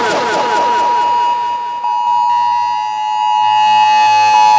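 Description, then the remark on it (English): A loud, harsh electronic alert tone blares steadily for several seconds, a piercing buzzing whine with layered high harmonics, like an Amber Alert emergency tone from a phone, with no talking. “That's the sound of an Amber Alert.”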